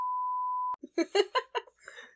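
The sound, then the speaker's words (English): A loud, steady censor-style beep tone holds for under a second, then cuts off sharply, giving way to bursts of laughter and voices. “We can release a mom cut in which this portion is just that like technical difficulties beep.”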